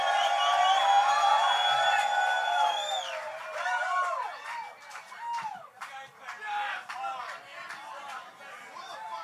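A crowd at a live band show cheers loudly with high whoops and sliding whistle-like yells, then scattered clapping breaks out alongside the shouting.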